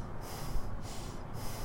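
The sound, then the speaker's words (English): Quick, sharp inhales, several breathy gasps in a row, fairly loud with no talking. A person is acting out a frightened intake of breath. “Whenever humans are scared, what do? Sharp inhale.”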